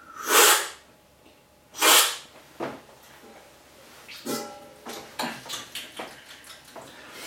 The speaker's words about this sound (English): It sounds cooler if I am spitting on the floor. Yeah, I'm gobbing on the floor. Spitting all my coffee on the floor.